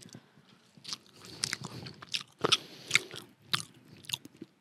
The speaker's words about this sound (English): Do you hear me chewing this little French fry?